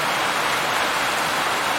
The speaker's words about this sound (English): And then all of a sudden, a huge deluge of rain started pouring down.